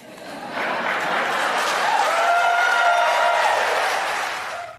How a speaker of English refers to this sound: That was her answer. I do. And then they applaud.